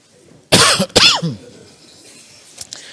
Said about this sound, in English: just so you'll know, I don't have the flu. This is that same cough that I get every year. It's more from my sinuses and allergies. I thought when I started allergy shots that I'd be rid of it, but obviously not.